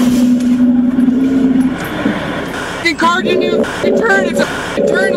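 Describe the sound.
Dash cam audio from a truck at 222nd and Lougheed Highway in Maple Ridge: a steady vehicle engine hum runs throughout, broken by a sudden jolting impact near the middle as another driver hits the truck, followed by startled voices shouting over the continuing road noise.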